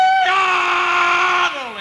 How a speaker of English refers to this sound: You, I'm just doing a rebel yell here to kind of kick the Stan Freberg show off, you know what I mean?